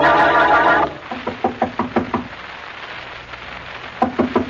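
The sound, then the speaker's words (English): After a brief swell of music, a rapid series of sharp knocks on the door of Mrs. Worthington's house, two quick bursts of several raps each separated by a pause, fairly loud. “Well, Mary, we've knocked on the door enough times to be the police.”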